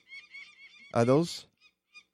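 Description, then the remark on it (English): A peregrine falcon calls: a run of thin, high chirping notes, then one loud, harsh, drawn-out cry, followed by a couple of faint chirps. “That's what a peregrine sounds like.”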